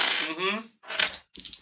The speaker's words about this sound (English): Oh, I don't like how many dice you're rolling.